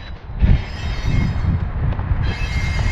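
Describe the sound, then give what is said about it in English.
A train rolls past on a railroad with a steady low rumble and rattling wagons, faint wheel squeal riding over the top, filling the whole stretch without any voices. “All right, train's almost done.”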